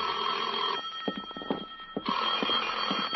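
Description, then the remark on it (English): An old-fashioned telephone bell rings loudly at 10 o'clock, two bright metallic rings separated by a short pause with a few faint clicks in between, and no voices. “At 10, my phone rang.”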